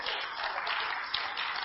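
An audience claps together, a dense, steady wash of many hands at an even loudness for the whole short stretch, with no voices standing out above it.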